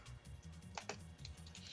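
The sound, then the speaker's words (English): Sharp computer keyboard clacks strike in an uneven burst of heavy-handed typing, a couple of hard keystrokes standing out over a low steady hum, fairly quiet, with no voices. “Someone's beating the shit out of our keyboard over there.”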